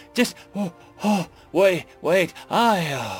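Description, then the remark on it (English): A voice imitates heavy, gasping breaths after running a few hundred meters: six quick, voiced pants in a steady rhythm, fairly loud, the last one drawn out into a longer groaning exhale. “Another few hundred meters and Bernie slumped onto the grass, breathing heavily, as Nash caught up.”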